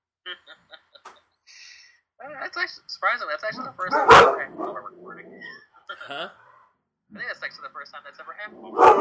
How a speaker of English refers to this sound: That does not normally happen. This is what happens when I leave the front window open so that they can bark at passersbys.